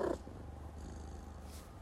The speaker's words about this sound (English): I also have Scooby here, and she's being very involved in the podcast today, so sorry if you literally hear her purring through the microphone.